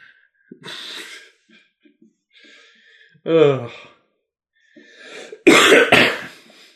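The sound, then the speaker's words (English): A loud coughing fit: harsh, rough coughs and throat clearing come in uneven bursts with short pauses, ending in two forceful hacking coughs, along with strained breathing and vocal sounds. “That would have been symbolic of my life if I died coughing up a lung saying boo.”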